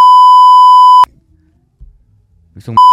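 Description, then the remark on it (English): A loud, steady high-pitched censor bleep holds for about a second, then cuts to a near-silent gap with a faint murmur before a second bleep cuts in at the end. “You beep out that Pacific thing.”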